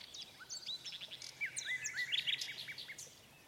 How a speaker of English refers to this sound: And the nightingale continued her singing. She sang of the quiet churchyard, where the white roses grow, where the lilac wafts its perfume on the breeze, and the fresh, sweet grass is moistened by the tears of the living.